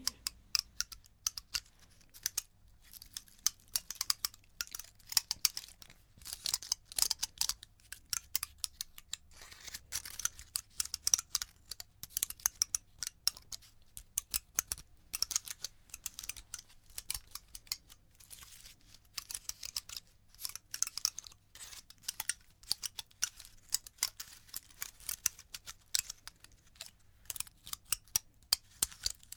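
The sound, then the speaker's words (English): A pine cone being handled: a steady, dense stream of tiny dry clicks and crackles, crisp and high-pitched, continuing without pause and with no voices. “This is a pine cone.”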